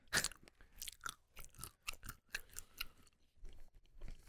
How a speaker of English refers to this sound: Once this guy stops munching.